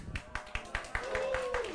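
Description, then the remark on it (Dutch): A brief burst of applause: steady, evenly spaced claps at a brisk rhythm, fairly loud, with a faint voice murmuring underneath toward the end. “Nou, jij krijgt zelfs applaus.”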